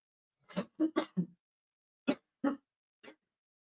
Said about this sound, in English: That is just a sick cough.